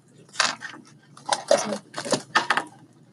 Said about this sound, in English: Roll yellow dice.